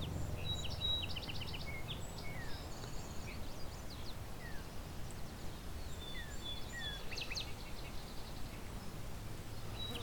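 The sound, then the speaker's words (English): Several songbirds sing in an open field beside a rail trail, mixing high buzzy trills with sweet whistled phrases from field sparrow, savannah sparrow and yellow warbler, repeating over a steady low rumble of background noise. “Field sparrow. Savannah sparrow and yellow warbler as well.”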